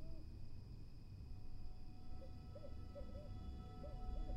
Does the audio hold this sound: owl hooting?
yes